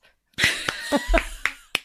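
A handful of sharp, crisp hand claps, about six, as the speakers give themselves a round of applause, landing at an uneven pace with short pauses between them, moderately loud with a faint hum of other sound underneath.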